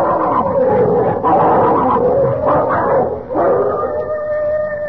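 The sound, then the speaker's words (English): Several dogs fighting, a dense, continuous tangle of snarling, barking and yelping, ending in a drawn-out howl that holds steady pitches for the last second or so. “Oh, it's them dogs. They're fighting again.”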